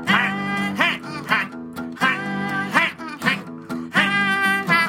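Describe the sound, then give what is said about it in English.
Loud, nasal goose quacks repeat in quick clusters, several calls overlapping with brief gaps between bursts, and no talking. “Check out that goosey sound going quack.”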